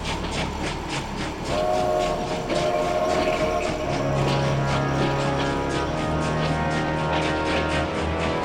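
A passing train rolls along with steady rhythmic clatter of wheels on track, while loud sustained whistle tones sound over it, with no one speaking.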